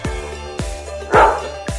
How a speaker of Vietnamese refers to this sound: Chó sủa lên một tiếng rồi nhảy qua vạch đích đứng thứ 11.